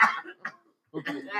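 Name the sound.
cough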